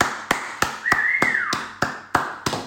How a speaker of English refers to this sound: Not many claps going on there, guys. It must be a very light team.